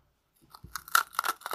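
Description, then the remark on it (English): Crunching on a Taffy Crunch hard candy, a quick series of brittle crunches over about a second, loud and sharp with no talking. “Taffy Crunch.”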